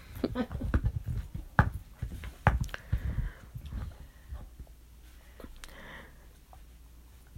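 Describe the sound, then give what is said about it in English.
A female dog chews noisily on a chew toy, with irregular wet crunching, gnawing and clicking sounds that grow quieter toward the end. “If you hear anything weird, it's the dog chewing on, she has some kind of a chew thing, and she's eating it kind of noisily.”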